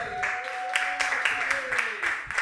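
A comedy show audience in New Orleans applauds as a comedian is introduced, with a dense, steady patter of many hands clapping and a sustained high cheer or whoop running over the top.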